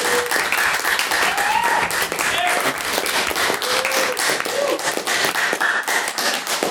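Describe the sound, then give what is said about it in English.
A debating society audience applauds steadily for several seconds, congratulating a society team that reached the semi-final of the Irish Times debating competition: a dense, even patter of many hands clapping with a few whoops and cheers rising briefly above it. “Can we please get a round of applause?”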